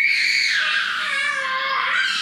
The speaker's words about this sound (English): What you can hear in the background, that's animosity is what it is, I think. Yeah. Stop screaming like that, man. You're going to hurt your throat.